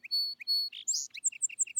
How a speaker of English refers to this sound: The song sparrow, which every child knows, comes first, at least his voice is first heard.